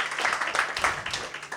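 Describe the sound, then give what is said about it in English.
A crowd at a reading event claps for a first-time reader, a dense patter of many hands filling the room at moderate volume, brief and continuous without any pause. “Give her another round of applause.”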